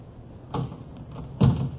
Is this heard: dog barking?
no